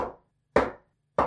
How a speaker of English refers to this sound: So that was a knock.